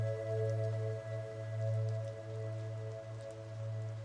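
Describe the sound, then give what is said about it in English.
Steady rain hisses and patters beneath a loud, sustained low droning hum with layered tones, continuous throughout with no voices. “Just let's think about that as the rain keeps pouring over us.”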